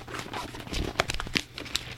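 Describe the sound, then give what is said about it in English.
Thin Bible pages rustle and flip, a series of quick crinkly turns and shuffles with soft crisp snaps as someone turns to a passage, no voices, just the dry papery handling sound. “This is Rick shuffling his Bible. All right. You can hear the pages turning.”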